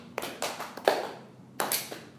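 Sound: slow hand clapping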